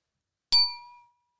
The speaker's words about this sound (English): But with that in mind, we're still drinking wine, shall we crack into it? Clink into it? Let's clink into it.